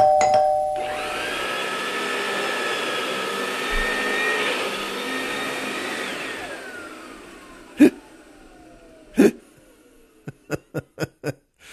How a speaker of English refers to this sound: Boy, that one gets me. I love that the doorbell has to ring a couple of times, 3-4 times. This salesman wants to sell, whoever that is. Or it's the postman,